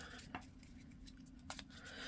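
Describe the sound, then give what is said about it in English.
A very small Spread Creator deck of cards from hollyoddly.com being shuffled, with quiet papery flicks and a couple of sharper snaps against a low, steady background hum, and no talking. “So I'm just going to give these a little bit of a shuffle.”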